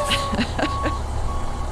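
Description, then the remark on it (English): A voice mimics a truck's reversing alarm with about four short, evenly spaced beep-like syllables, fairly loud over a low steady rumble. “This is why we did back up this. The truck. Back up.”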